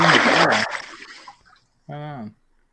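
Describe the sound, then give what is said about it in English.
A brief burst of splashing water as a person is in a swimming pool, fading quickly, followed after a pause by a short voiced sound. “He actually is in the water. There we are.”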